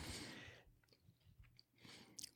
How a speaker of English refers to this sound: Oh, let me see if I can turn it on. Can really hear myself chew now.